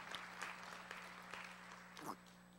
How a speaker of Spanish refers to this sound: Den un aplauso, apláudale.